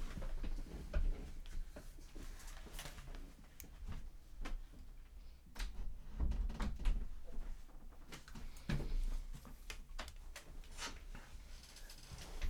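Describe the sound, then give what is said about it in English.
Quiet background noise with a scatter of soft knocks, clicks and low thuds as a door is pushed shut and latched, with no one speaking. “if you hear some background noise, that was me shutting the door.”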